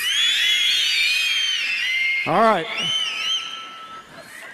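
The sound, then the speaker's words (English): An audience whistles together on the count of three, a dense, shrill tangle of high pitches sliding up and down. A man's voice briefly cuts in partway through as the whistling thins out. “Now, I want all of you, those of you who do this, do this, do this, those of you who just do the little round lip thing, you know, whatever it is, everybody whistle on the count of three.”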